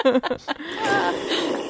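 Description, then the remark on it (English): A couple of short, rough, throaty bursts, like a person burping, trailing off into a steady wash of breathy noise. “You know why you're burping?”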